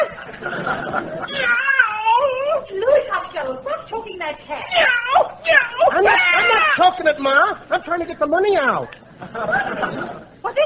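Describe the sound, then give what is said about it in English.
A cat meows over and over in a long, fairly loud run of wavering, rising and falling cries, some drawn out into a yowling caterwaul, with almost no pause between them. “Money in that cat?”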